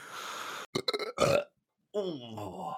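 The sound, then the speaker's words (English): A few sharp coughs burst out, then after a short pause a long, loud, guttural burp rumbles on with a wobbling pitch. “Sorry, I coughed and then I burped.”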